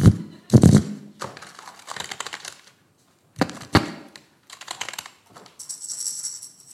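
Playing cards being shuffled again for a card game in several quick bursts, with rapid papery riffling and flicking clicks separated by short pauses, and no voices.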